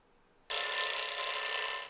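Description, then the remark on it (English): A loud, bright electronic telephone ring starts abruptly after a short silence and holds steady with a harsh buzzing tone for well over a second before cutting off. No one speaks. “It's more like a phone.”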